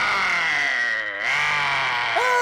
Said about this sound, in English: Suddenly, there's a beeping noise behind him. He turns around sharply, and from behind some helictites rises a large, hairy monster. The monster lets out a terribly menacing but strangely robotic roar.